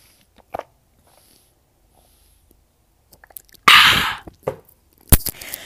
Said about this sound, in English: Drink of water.